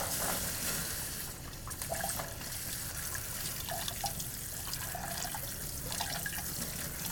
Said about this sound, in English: I've got some raw almonds here that I've just blanched, and to do that, you just cook them in boiling water for 10 seconds, and then I'm just going to take them over and strain them. I'll run them under some cool water just to